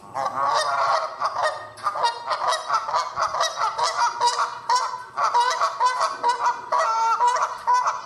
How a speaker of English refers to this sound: Geese are beautiful to watch, and God made them. God made them to breed and live and to grow in this world, but geese have another side.